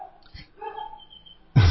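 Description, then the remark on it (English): A dog gives a single sharp, loud bark at the very end, preceded by a stretch of faint, thin whining tones and quiet background. “Inspiration comes to me now with a dog barking in the background.”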